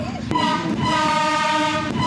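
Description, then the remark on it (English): A Kosovan train runs along a railway line in Kosovo, with a steady rumble, sustained metallic tonal whines and a couple of sharp clanks from the wheels and couplings. “The one with the Kosovan train”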